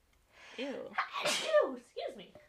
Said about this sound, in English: Gesundheit. Thank you.